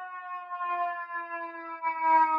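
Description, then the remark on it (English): An ambulance siren holds a steady, piercing wail that swells slightly louder toward the end as it passes outside. No one speaks over it. “be blowing me with the ambulance, every day, all day, like.”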